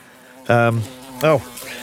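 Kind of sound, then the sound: insect, bee buzzing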